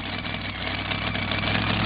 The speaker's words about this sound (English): Here comes another truck out of Texas. Ray Miller out of White Right, Texas.